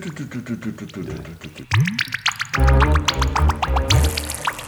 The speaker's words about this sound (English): The rhythm track of … was a drip loop, but there were elements in it that weren't loops